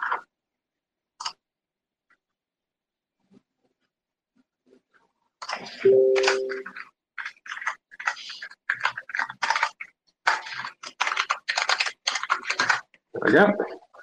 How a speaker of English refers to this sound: Stop typing so loud. It's not loud. I've got a mechanical keyboard. I can't. I'm gonna buy you a different keyboard in silence. Who said a keyboard needs to be so loud? This one is. It cannot be helped.